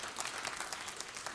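A church audience at a morning service applauds about 30 volunteers, with dense, steady clapping that forms a continuous crackling wash, fairly soft throughout with no voices over it.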